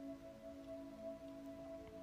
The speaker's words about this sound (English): Droplets of water sprinkle down from above, and soon the rain is washing away the day's layer of dust and sweat.